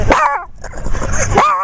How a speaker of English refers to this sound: Listen to the three separate dogs barking one at a time. Here we go.